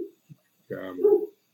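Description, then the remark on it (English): A dog gives one drawn-out, bark-like vocal sound lasting under a second, with a slight rise in pitch near the end, preceded by a couple of faint short noises. “So the dog agrees with me.”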